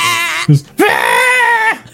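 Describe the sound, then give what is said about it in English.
A person imitates a goat's scream: two loud, strained bleating cries close to the microphone, a short one followed after a brief pause by a longer, wavering one. “I like goat screams.”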